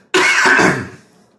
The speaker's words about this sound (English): Hold on, I have to cough.